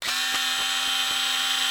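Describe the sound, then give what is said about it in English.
A Bosch electric screwdriver whirs steadily with a high, buzzing motor tone and a faint regular pulsing, running loud and unbroken for under two seconds with no voices. “that you've brought a Bosch electric screwdriver with you.”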